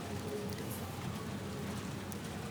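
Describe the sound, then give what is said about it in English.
Steady rain patters outdoors after a spell of hot weather, a dense continuous hiss of drops striking a surface with a low rumble beneath, moderately loud and unbroken throughout. “It feels very special right now, especially to be outside and feeling the drops of rain on my skin.”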